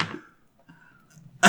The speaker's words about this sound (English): I was terrified when you knocked my dice there.